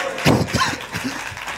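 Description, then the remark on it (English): A crowd claps and shouts glory to God in a loud, dense burst of noise, with heavy thumps and scattered raised voices blending together, then tapering into a steady roar. “Clap your hands and shout glory to God.”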